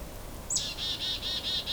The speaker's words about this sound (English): That hairy woodpecker, which is that squeaky one in the distance.